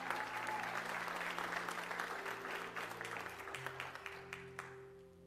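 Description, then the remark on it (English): An audience applauds as a person is called up to the front, dense clapping that thins into scattered individual claps toward the end, with a low sustained tone humming underneath. “Let's give them a hand clap as they come.”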